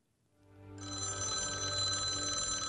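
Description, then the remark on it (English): A telephone bell rings loudly and continuously in a home, its bright metallic clang swelling in within the first second and holding steady without pause. No voices are heard. “He's alone at home. His partner is away visiting family. The phone rings.”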